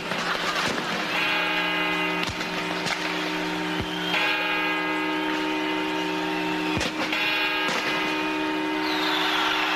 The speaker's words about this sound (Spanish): Bueno, cuando ha dicho ya que va la primera campana, la segunda, yo ya no sé qué tal